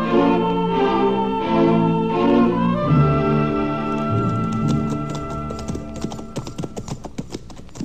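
Horses' hooves clip-clop in a steady, rhythmic series of sharp clops that begin partway through, playing over a sustained musical background with no one speaking.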